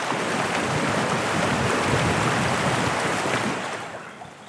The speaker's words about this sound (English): All that could be heard was the river.